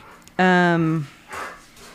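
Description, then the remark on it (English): A squeaky dog toy lets out one loud, drawn-out squeak that sags in pitch as it ends, followed by a brief, softer rustling sound, as a boy plays with a dog. “My son is playing with my dog. So that's the squeaky you hear back there.”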